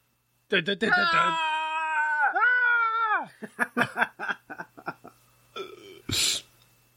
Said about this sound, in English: Oh, heavy breathing.